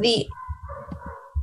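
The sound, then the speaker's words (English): A dog lets out one sharp, loud bark, followed by a thin, drawn-out whine while low background noise rumbles underneath. “really wish my dog would calm down.”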